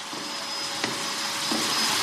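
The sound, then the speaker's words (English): A vacuum cleaner runs steadily with a constant whooshing roar and faint whine as books are vacuum cleaned in a library reading room, interrupted by a couple of soft knocks as the nozzle bumps against something. No one speaks. “They're actually vacuum cleaning the books.”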